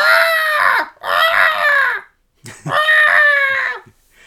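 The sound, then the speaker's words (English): A human voice imitates the screaming birds of a Pokémon film, such as Moltres, with three loud, strained shrieks in a row, each harmonic-rich cry bending downward at its end, separated by brief pauses. “a lot of the film is comprised with these birds just screaming.”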